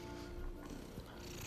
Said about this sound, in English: Listen to them purring at night. No need to be scared, no need to have fright. These are cats just purring in the night.